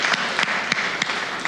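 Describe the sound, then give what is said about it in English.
An audience at a church service claps for Jesus Christ together in a dense, steady wash of applause, with a few sharper individual claps standing out at a quick, uneven rhythm. No one speaks. “We can clap for Jesus Christ, right?”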